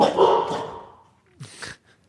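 A dog barks twice, a longer, fuller bark followed after a short pause by a quicker, sharper one, with no one talking over it.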